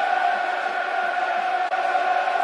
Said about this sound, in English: Crowd recognising the commitment of the players and giving it back.